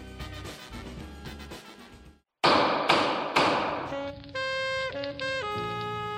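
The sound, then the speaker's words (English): Three loud, heavy thumps land in quick succession, about half a second apart, as someone works on repairing a hover chair (floater chair), followed by a steady, mechanical-sounding tonal hum. Nobody speaks. “Man, Judge Hodgman, you're really getting in there on repairing that, what's that called? Hover chair.”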